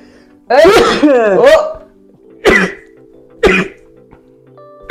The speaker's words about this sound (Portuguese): As irmãs … também espirram.